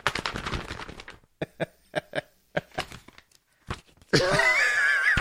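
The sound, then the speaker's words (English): Crisp newspaper pages rustling and flipping, a dense flurry at first, then several separate sharp crinkles and snaps, ending in a louder burst of rustling, as someone flips through the paper in a bathroom. “You flip it through the paper.”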